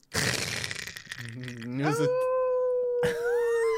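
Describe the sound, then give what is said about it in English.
A loud, crackling burst of thunder with lightning fills the first second, then a single long wolf howl rises and holds steady and strong, with a brief break before it swells again. “Oh, that was and thunder. Yeah, yeah, and then a wolf howling.”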